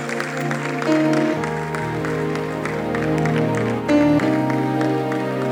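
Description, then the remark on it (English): An audience claps hands along to loud, sustained keyboard music, the rapid claps blending into a steady crackle beneath the droning chords. “Clap your hands, stand to your feet.”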